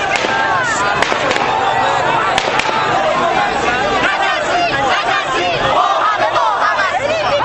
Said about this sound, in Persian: اینجا محل درگیری میان معترضان و نیروهای ضد شورش است. صدای شعارهای مردم خشمگین با صدای تیرهایی که به سمت آنان شلیک میشود در هم میآمیزد.